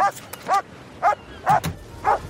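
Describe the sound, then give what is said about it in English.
Dogs yipping and barking in quick, high-pitched bursts, about five sharp yelps spaced roughly half a second apart, clear with no one talking. “Look at the dogs.”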